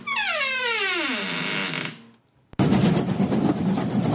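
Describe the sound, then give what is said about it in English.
A high whining tone slides steadily downward and fades, a brief silence follows, then a loud, dense mechanical roar of train engine room noise starts abruptly and keeps going without a break. “This is the main engine room of the train. Sorry, you might think it's a bit loud, but this is the engine room.”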